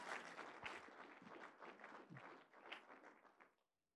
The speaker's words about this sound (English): God, yes, let's clap. Somebody wants to clap, and it's probably a woman. So can some men help that woman clap?